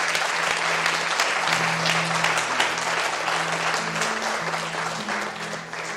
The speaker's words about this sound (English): Come on, let's give God a round of applause.